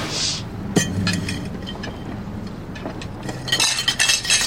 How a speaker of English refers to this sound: I'll just do the dishes now.